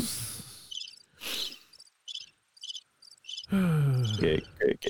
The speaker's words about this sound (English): Cricket.